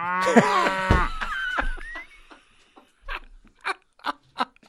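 A loud, low cow moo bellows up front and trails off, followed by a few short, softer rhythmic bursts of sound.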